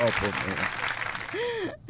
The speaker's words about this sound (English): Give it up. Where is it? Give it up. Oh, applause and all that. There it is.